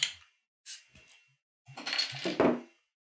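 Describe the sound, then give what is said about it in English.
A few sharp glassy clinks, then about a second of beer gushing and fizzing into a glass, rising slightly in pitch before it stops. No one speaks. “I just wanted a really nice pour.”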